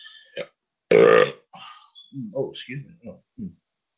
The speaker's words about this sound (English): That belch, ladies and gentlemen, on Revolution is being brought to you tonight by Canada Dry Ginger Ale.